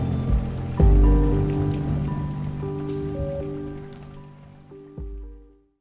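A drizzle sound effect introducing the Drizzle News segment: steady rain falls in a continuous hiss, with deep thuds near the start and end and sustained low tones underneath, fading out at the close. No one speaks.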